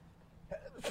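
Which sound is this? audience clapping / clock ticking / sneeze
sneeze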